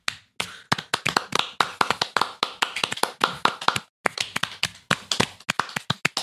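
Rapid hand clapping, sharp bright claps in an uneven, quick rhythm that runs steadily for several seconds, pauses briefly, then resumes. No voices are present.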